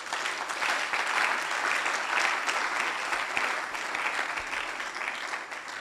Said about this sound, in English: And you can clap your hands also.